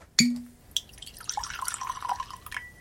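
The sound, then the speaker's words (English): A sharp cork-like pop and a light knock as a bottle of Elijah Craig Barrel Proof bourbon, a 10-year release at 127.2 proof, is opened, then about a second of liquid glugging and trickling into a glass, fairly quiet, with no one talking. “So let's go and get this open and in the glass.”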